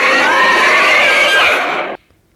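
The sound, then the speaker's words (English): A loud, shrill creature cry from the 1950s film Creature from the Black Lagoon: one sustained, wavering scream with a rich harmonic edge, lasting about two seconds before cutting off abruptly into silence. “That was the creature from the Black Lagoon.”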